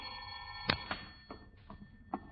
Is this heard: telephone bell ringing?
yes